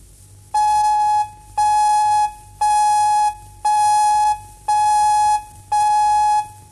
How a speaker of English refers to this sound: This is ABC Radio throughout Victoria. Here's the time signal for 7 o'clock.